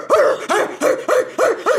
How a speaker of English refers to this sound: Oh my, a dog. Hi. Oh, you're a mean dog. Are you rabid? You're drooling.